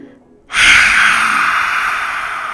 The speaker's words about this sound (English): But what you're going to do is breathe in deep from the bottom of your belly. And when you exhale, you're going to stick your tongue out and just let out a big sigh.